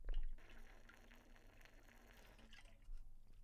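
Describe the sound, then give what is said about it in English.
Someone takes a drink of water, with soft liquid sloshing and swallowing sounds over a few seconds, quiet and steady, with no talking. “So, let me take a water break.”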